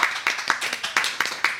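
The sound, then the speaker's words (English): Hands clapping in a steady, quick rhythm, a run of sharp, crisp claps at a moderate volume with no voices over them, like a small group applauding; a live audience clapping for the host's husband. “So those of you that are here live, and if you're listening, clap for my husband.”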